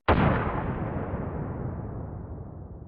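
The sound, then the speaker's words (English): A single grenade explosion, from grenades on a man's belt whose pins were pulled, bursts suddenly and loudly, then rolls off into a long, rumbling decay that fills the remaining seconds. No voices are present. “Another man falls from an arrow, then Shadow leaps past another, lifting the pins from the grenades on his belt as she passes. Before he even realizes what has happened, he is engulfed in an explosion.”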